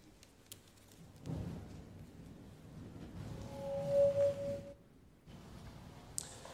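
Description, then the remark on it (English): Steady rain hisses outside a church on a rainy morning, a soft wash of noise that swells for a few seconds with a low rumble beneath, then fades. A brief tonal whine rises in the middle; no one speaks. “Welcome to Grace Baptist Church on this rainy morning.”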